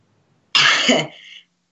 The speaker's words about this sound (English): Excuse me. …'s coughing.